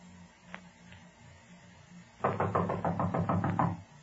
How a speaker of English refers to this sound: You'll go to the door and knock on it. When someone answers the door, we'll rush in.